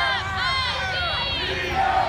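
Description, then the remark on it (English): A large crowd loudly chants the spelled-out Mizzou cheer "M-I-Z-Z-O-U" in unison, many voices shouting together, sustained for the whole moment, as they try to drown out protesters. “Some of the white people in the crowd try to drown them out by using the Mizzou chant, M-I-Z-Z-O-U.”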